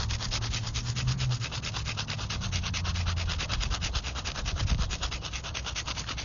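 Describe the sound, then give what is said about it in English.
A pencil rubs quickly and lightly back and forth over a thin piece of paper laid over a gravestone, a gravestone rubbing in a cemetery, making a steady, dry scratching in rapid even strokes that continue for several seconds without any talking. “That is where you take a thin piece of paper and a pencil, you lay it over the gravestone, you take your pencil and you simply lightly rub it along the paper.”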